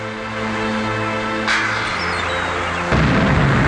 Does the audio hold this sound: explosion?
yes